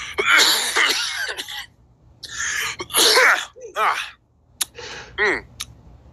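A person clears their throat repeatedly and forcefully, a series of harsh, raspy hacks and coughs with brief pauses between bursts, ending with a few shorter grunts.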